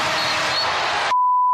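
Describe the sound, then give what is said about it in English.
A loud basketball arena crowd roars for about a second, then cuts off abruptly, leaving a steady, sustained electronic game-ending buzzer tone that holds alone to the end, as Telfair's shot ends the game in a loss for the Nets. “At the buzzer.”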